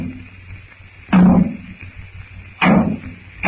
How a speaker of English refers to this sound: One more blow of the hammer, and the water goes to the boilers.